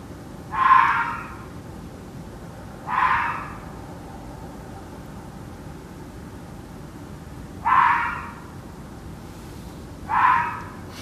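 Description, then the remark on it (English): Four short, harsh fox barks just after 4 a.m., recorded on a mobile phone held out of a bedroom window, ring out at irregular intervals over a steady low background hiss, each a rasping burst with no voices around them. “Yeah, it's a barking sound, all right. Do you know what it is? It is a fox.”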